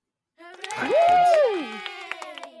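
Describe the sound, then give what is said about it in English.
Scattered claps from an audience welcoming a guest ring out over several seconds, while a sustained voice-like call swells, holds and slides downward over them before the clapping continues on its own. “Yes, clap, clap, keep clapping.”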